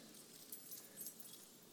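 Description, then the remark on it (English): A soft, continuous metallic jangle of many keys shaken together as people stand and hold them out during a prayer, with a few brighter clusters of jingling rising out of the rustle, heard alone without voices. “We hold out our hands, we hold out these keys.”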